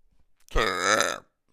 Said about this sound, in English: Well, the lesson wasn't don't burp during the podcast, obviously.